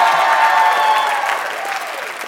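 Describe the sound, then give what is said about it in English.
A crowd at a live show applauds loudly and steadily for Sharon Leslie Morgan and the TV show Dynasty, a dense wash of clapping that holds for a couple of seconds and then eases off slightly, with faint cheering mixed in. “And would you please make some noise for Sharon Leslie Morgan and the TV show Dynasty?”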